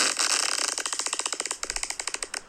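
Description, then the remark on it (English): A crackling fart: a fast, buzzy stream of sharp pops that slows into distinct bursts, broken by short gaps between clusters, with no voices over it. “Yeah, you did well with the gaps because even with the crackle part, there was gaps in between each crackle, and that's hard to do.”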